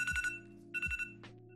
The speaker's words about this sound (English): Wait. God, literally, the speak of the devil, that was my fucking alarm sound. That sounds like a bad alarm sound, honestly. That sounds so annoying. Yeah, I mean, that's what I wanted to, because I wanted to wake me up.